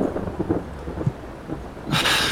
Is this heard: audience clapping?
no